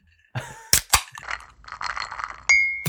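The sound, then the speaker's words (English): Beer bottles knock together in a toast: a couple of sharp glassy taps, some rustling clatter, then one bright ringing clink, fairly loud, with no voices. “All right, I'll drink to that. Here, cheers.”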